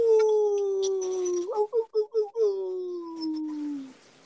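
A single long wolf howl, loud, holding a steady tone that slowly slides downward, breaking into a few quick wavering pulses in the middle before trailing off.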